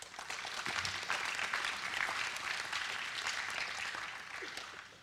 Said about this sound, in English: As you sit, we applaud you again.